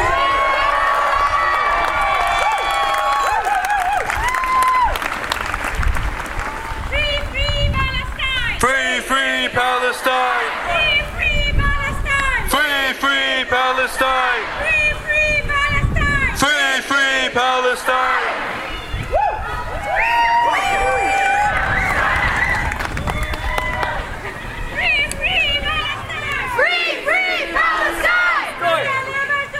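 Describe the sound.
A large outdoor crowd at a Gaza solidarity rally and march in Victoria on November 26, 2023 cheers and shouts together, with rhythmic chanting voices rising and falling over a steady wash of noise, loud throughout.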